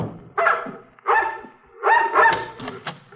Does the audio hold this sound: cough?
no